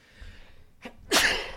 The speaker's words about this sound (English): Two. Good? It's a man sneeze, yeah. He's good.